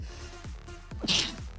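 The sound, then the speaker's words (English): A single sharp sneeze bursts out with a bright hiss, preceded by a quick breathy intake, with no talking around it. “I had to sneeze. Sorry.”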